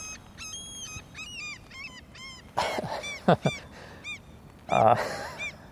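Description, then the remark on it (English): A seagull calls over and over in a run of shrill, squealing, distinct cries, with a few louder, harsher bursts partway through. “I think this seagull isn't enjoying this episode so much.”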